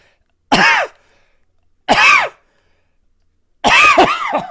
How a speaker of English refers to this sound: please cough into your elbow.